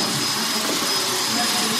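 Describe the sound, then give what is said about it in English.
A vacuum cleaner being used to clean books runs steadily, a continuous loud whooshing roar with a faint high whine on top, holding even for the whole short stretch. “They're actually vacuum cleaning the books.”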